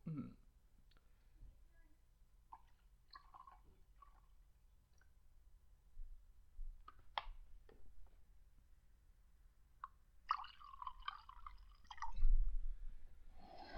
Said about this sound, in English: Let us pour the whiskey.